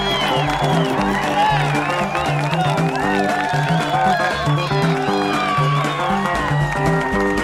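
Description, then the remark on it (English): A large crowd cheers and shouts wildly without letup as a band starts playing on a stage filled with smoke and flashing lights. The roar mixes with the band's steady bass line underneath, loud and dense for the whole stretch. “And then suddenly the stage is filled with smoke and lights begin to flash and sparkle and swirl above the stage and the band starts playing and the crowd goes wild.”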